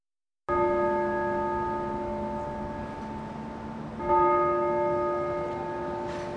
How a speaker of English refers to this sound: did you hear those bells?